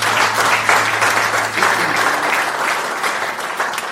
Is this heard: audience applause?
yes